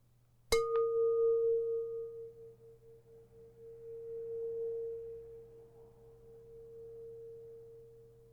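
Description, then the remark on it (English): A metal rice cooker bowl is struck once like a gong, giving a sharp hit followed by a steady mid-pitched ring with a faint higher overtone that hums on for several seconds. “Well, thank you very much if you're still here and have survived through the rice cooker bowl gong and the 18 haikus, well, the 18 entries of haikus sent in by our listeners.”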